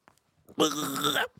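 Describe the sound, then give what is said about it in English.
A single loud, strained retching sound made by a human voice, a raspy gagging heave of under a second, imitating a dry heave, with quiet breaths before and after. “It was just burping. Dry heave, the dry heave, dry heave.”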